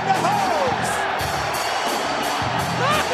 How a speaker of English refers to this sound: Oh, the crowd is going nuts. I love it.